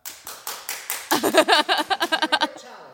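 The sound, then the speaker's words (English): An audience claps in a clap-o-meter vote on which Twilight character, Edward or Jacob, is hotter; the clapping starts in a steady rhythm, then swells louder, with voices whooping and cheering over it before fading out. “So we're going to do a clap-o-meter.”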